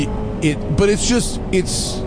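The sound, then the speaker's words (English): A ZR1 sports car's engine drones steadily from inside the cabin as it laps the Road Atlanta race track, a constant roar of road and wind noise underneath, while voices talk excitedly over it. “So here's ZR1 and Road Atlanta.”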